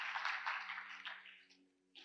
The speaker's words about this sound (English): Come on, let's give them a hand clap today. Heaven is rejoicing.